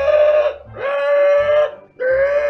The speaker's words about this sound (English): But as the, yeah, you walk in, and maybe 10 seconds after you walk in the room and start cutting chains, the alarm does sound. The siren.